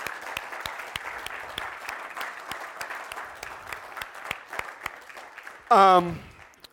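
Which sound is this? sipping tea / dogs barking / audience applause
audience applause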